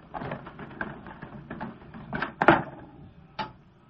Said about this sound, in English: Come on, into the garage. Yeah, I'll get the doors.